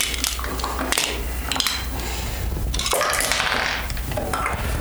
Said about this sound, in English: Putting the dice inside the boo box.